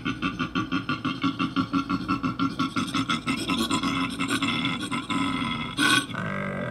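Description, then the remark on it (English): A koala bellows in a long run of rapid, rhythmic, rasping grunts, deep and snoring-like with a harsh buzzy edge, loud and continuous, ending in a few louder snorts. “I hope they sound like, I hope they sound like a baby goat being shoved through a pipe. I just found out that koalas are evil.”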